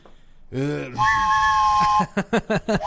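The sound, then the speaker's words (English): A loud train whistle sound effect holds a steady, bright tone for about a second, after a brief sliding lead-in, then gives way to a few short rhythmic bursts. “Blow the train whistle.”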